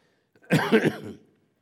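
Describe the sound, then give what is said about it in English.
A raspy cough blends into a brief throat clearing, one rough burst lasting under a second, heard alone with no talking around it. “It does, you know, yeah, I might have to cough.”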